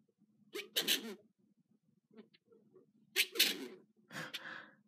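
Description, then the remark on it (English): Three sneezes burst out, each a sharp explosive blast with a breathy tail: one near the start, then two more in quick succession after a quiet pause. Nobody speaks. “When people sneeze, it's not, I know it's not supposed to be funny, but sometimes it makes me laugh.”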